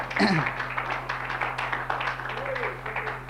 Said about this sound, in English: Put your hands together, clap them unto the Lord. Thank God for his word.